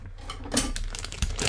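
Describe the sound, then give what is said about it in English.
Crinkling of a plastic bag of Jell-O gummies as it is cut open with scissors, with short crackly rustles and a couple of sharper snips over a second and a half, no one speaking. “Here, if I can open them. Here, let's do this. I've got scissors in here just for this reason.”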